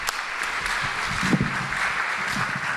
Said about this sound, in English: With that, I'm going to ask all the panelists to please come and join us. Please give me a round of applause. Join me in this for the panelists.